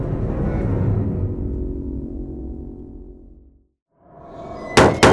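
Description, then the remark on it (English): A low, heavy rumble slowly fades to silence, then two sharp, loud blasts strike a door in quick succession, like energy weapon fire hitting metal. “What's that noise? Sounds like a blaster.”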